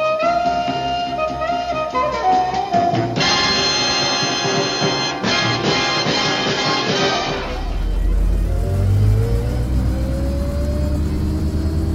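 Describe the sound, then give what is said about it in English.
A car engine revs up loudly, its deep rumble rising in pitch as the vehicle accelerates and drives off, following a stretch of busy, tonal mechanical noise. “But we got the car, didn't we?”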